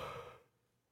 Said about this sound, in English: That yawn took your sentence away from you. Yeah, man. It took away my stutter, too. It did. You couldn't stutter. Have you ever stuttered on a yawn?